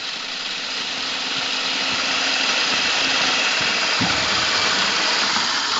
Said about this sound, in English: So I poured a bunch of the vanilla wafers into our food processor. We'll just chew them up for a minute here. You want a pretty fine crumb.